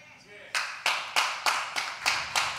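A person claps their hands about seven times in a steady, even rhythm. The sharp, crisp claps begin after a brief quiet moment and keep a consistent loudness throughout.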